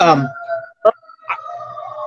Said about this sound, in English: There's a lot of sirens because I'm sitting outside. Sorry.